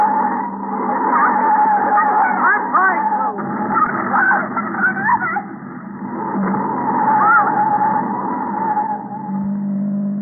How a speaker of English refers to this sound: I'm going to pull to one side, slam on the brakes, and see what happens.